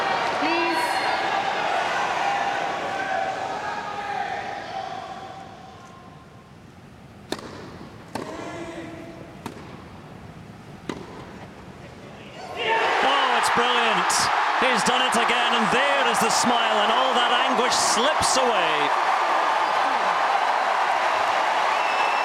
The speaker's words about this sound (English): Cheer as loud as he's heard in all his days at Wimbledon. And now the emotion is released, the tears never too far away.